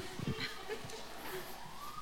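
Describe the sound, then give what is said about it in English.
A faint siren wails outside, its tone slowly rising in the background while muffled voices murmur. “That siren is to tell me that was the poorest time to tell a joke I've ever told a joke.”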